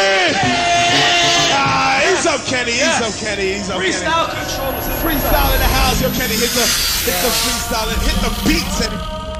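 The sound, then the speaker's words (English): A large crowd screams and yells continuously for several seconds, many overlapping high-pitched voices rising and falling together in a loud, dense roar, as at a live concert. “Now scream!”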